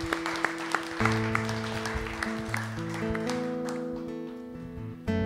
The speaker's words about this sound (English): Man, he's so good. Stand up to your feet and give him a round of applause.